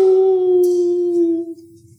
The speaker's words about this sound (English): And as we were there, these dogs could be heard howling off in the distance. Ow! Chilling.